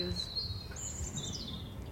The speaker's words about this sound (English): And, you know, we can hear birds singing now and it's just so lovely.